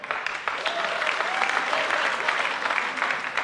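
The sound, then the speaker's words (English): A crowd claps steadily for several seconds to vote on which of two people was cooler, a dense, even wash of many hands with a faint tonal murmur underneath, holding at a fairly consistent loudness throughout. “We've clapping if this guy was cooler this morning.”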